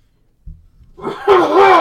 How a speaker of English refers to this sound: And now I'm going to lean away from the microphone and loudly and obnoxiously clear my throat.